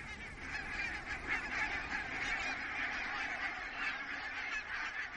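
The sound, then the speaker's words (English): A large flock of geese honking continuously in flight, a dense overlapping chorus of many calls at steady volume, with no talking. “And sometimes there's a flock of up to maybe 12,000 birds. And it's a sound and it's a sight.”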